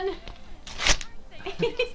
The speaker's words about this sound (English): That's the high pitch one. We are just ripping paper, guys. That didn't even sound real. Yeah. That didn't even sound real. You saw me rip it. You saw it.